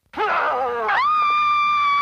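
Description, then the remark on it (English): A woman in a TV scene lets out a loud, piercing shriek that wavers at first, then locks into a sustained high-pitched cry lasting about two seconds, with no talking around it. “I actually thought that shriek was fine. The actual shriek.”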